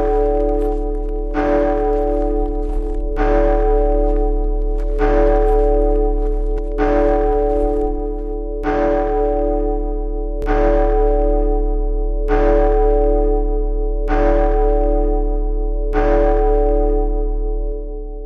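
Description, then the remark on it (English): Church bells chime in the evening amid a fine mist, in a steady, evenly spaced series of about nine loud strikes, each clang blooming into a long ringing hum that overlaps the next, with no voices. “The bells began to chime.”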